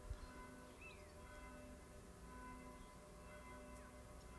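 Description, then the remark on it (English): Church bells ring steadily at lunchtime in remote France, their overlapping tones humming on throughout, with a faint low outdoor rumble and a few brief bird chirps. “It's lunchtime in remote France. Bells are ringing, trucks are driving by, tradesmen are working.”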